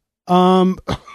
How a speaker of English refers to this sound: Easy now. Easy now. Excuse me. Still got that cough. Just doesn't want to go away.